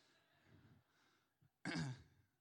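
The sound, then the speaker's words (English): A man, the speaker's dad, lets out one loud, harsh cough, sharp at the start and rough, after a few seconds of quiet breathy rustling and a small throat sound. “hey, it's my dad over here coughing.”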